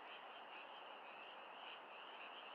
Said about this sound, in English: Among the rushes and reeds, in the quiet water, there dwelt a large tribe of frogs. One very warm night of the spring, the voices of the frogs arose in cheerful chorus. Some voices were low and deep. These were the oldest and wisest of the frogs.